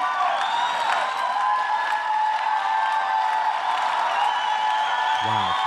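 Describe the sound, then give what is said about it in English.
A large crowd cheers and whoops loudly and continuously, a dense wall of shouting voices with scattered applause mixed in, sustained throughout. “It's a whole crowd of white people being like, boars!”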